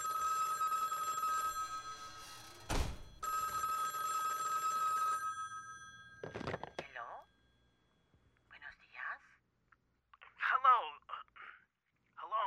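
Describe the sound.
A telephone rings with a steady, electronic warble for about five seconds, broken by a sharp click partway through, then the ringing stops and people start talking.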